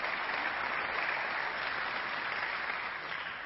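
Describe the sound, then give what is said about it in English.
Steady audience applause fills the whole stretch, a dense wash of many hands clapping at a constant loud level, easing only slightly at the very end. “Yeah, you can applaud again.”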